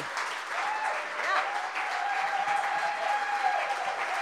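An audience claps steadily for several seconds, a dense, even wash of applause with no pauses, holding at a fairly constant loudness throughout. A faint high tone runs underneath part of it.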